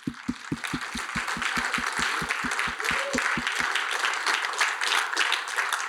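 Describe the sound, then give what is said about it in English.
An audience bursts into loud applause for themselves at the speaker's invitation, with a steady, rapid beat of unison clapping for the first few seconds before it dissolves into a dense, sustained roar of scattered clapping. “Let's clap for you.”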